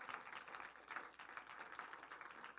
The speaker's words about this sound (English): I think we ought to give God a big hand clap of praise right there.